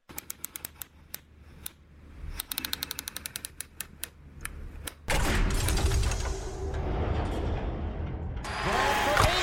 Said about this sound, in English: Punch it into the vault door, mate.